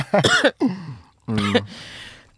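Two rough coughing fits, a lingering cough from a person still recovering from illness, each a harsh voiced burst trailing into breathy rasp, separated by a brief pause, with no talking around them.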